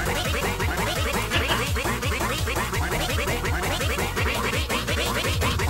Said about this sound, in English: I want to give a shout out to ducks because, well, ducks are awesome. Yeah. Do you want to give that sound effect that you found online there?